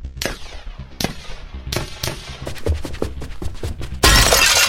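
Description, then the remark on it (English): A window's glass shatters as a man crashes into it in a 30-story building: a rapid series of sharp cracks and crashes with bright tinkling, ending in a loud sustained burst of crashing noise. “Ford crashed into a window and jumped straight out of his 30-story building”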